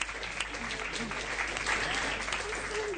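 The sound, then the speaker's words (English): An audience claps steadily for performers who each talk for 5 minutes, telling stories to make people laugh, at an event from a BBC television program. Many hands blend into a dense, even wash of applause that holds at a constant moderate loudness for the whole stretch. “All of them look very worried, but everyone claps to encourage them, and each of the people manages to perform well.”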